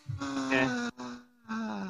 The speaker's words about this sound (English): I want us to scream. Most of the time we scream.